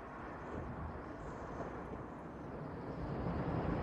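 A steady, loud roar of an airplane landing, filmed in a single take for the film The Shining, a dense engine rumble that swells slightly toward the end, with no voices present.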